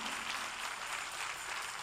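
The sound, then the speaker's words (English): A crowd applauds a contractor and builder on the building committee as he is asked to stand, many hands clapping together in a dense, steady wash of sound that stays fairly soft and even for about two seconds, with no voices standing out. “Give him a rousing applause.”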